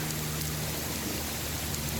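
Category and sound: sound effect, rain sound effect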